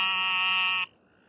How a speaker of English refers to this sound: That's an eastern narrow-mouthed toad.